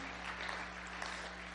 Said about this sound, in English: Come on, give Jesus a hand clap.